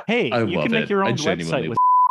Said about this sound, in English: We're bleeping that name.